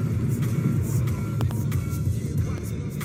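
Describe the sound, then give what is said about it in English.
A bus engine rumbles steadily and loudly, a low droning roar with faint rattles and clicks layered over it as the bus drives along. “Control this motherfucking bus!”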